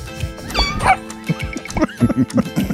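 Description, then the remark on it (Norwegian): A dog barks and yips in quick bursts, with a drawn-out meowing cry from a cat early on, all fairly loud and busy over a short stretch. “Det en katt og en hund. Åja, det begge deler, ja.”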